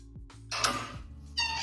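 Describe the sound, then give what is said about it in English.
A cat in a video meows a couple of times, the first call long and drawn out, the second shorter and higher, over a low steady hum. “Oh, cute. It's a cat.”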